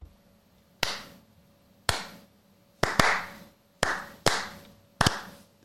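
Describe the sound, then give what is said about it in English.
A recorded slow-clap sound effect meant to sound like one person in an auditorium starting a clap that does not catch on: about seven sharp hand claps at a slow, uneven pace, a couple landing in quick pairs, each with a brief ringing tail. No other clapping joins in, and no one speaks. “So we have a slow clap one that we recorded.”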